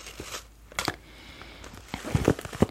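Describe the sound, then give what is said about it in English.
Crisp crinkling of a clear, TSA-approved, quarter-sized plastic toiletry bag with a printed design, in irregular bursts that grow busier and louder toward the end, with no one talking. “You also get this clear plastic bag, which is TSA approved.”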